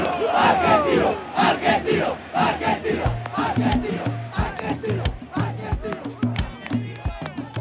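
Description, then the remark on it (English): A packed crowd at the Argentinos Juniors football stadium roars and cheers wildly as the players come out onto the field one by one, a loud continuous wall of shouting voices with rhythmic bursts of chanting rising and falling throughout. “One by one, the players pop out of his chest cavity onto the field, and now the crowd really goes nuts.”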